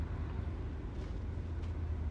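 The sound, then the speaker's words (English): A car backs up, its engine producing a steady, low rumble that fills the moment with no voices over it. “is this car backing up into me?”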